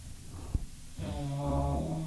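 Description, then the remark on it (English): The dog Daisy snores: after a short soft click, a long low rumbling inhale with a fluttering, buzzy tone swells and holds for about a second. “Listen to that snore.”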